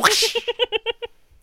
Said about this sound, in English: What I'm thinking is the snake curls around and then pulls itself off like a ripcord. Yeah. And just the lid like pops a whip crack sound effect.